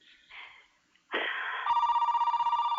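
A telephone rings loudly with a bright, rapidly trilling bell tone that holds steady for over a second, preceded by a brief rising burst and some faint rustling, as a caller phones in to a radio show. No one speaks.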